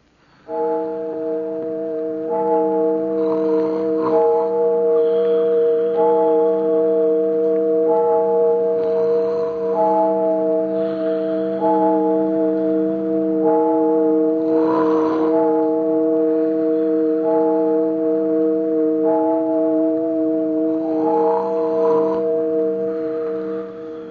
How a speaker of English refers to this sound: But rain or no rain, we just waited and waited until the church clock struck 12.